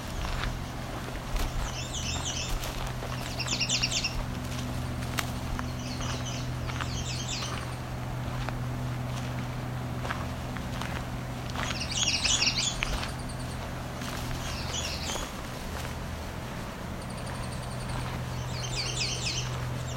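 Bright, repeated redstart song phrases ring out loudly, coming in short bursts every couple of seconds near a shore, over a steady low engine-like hum, with no talking.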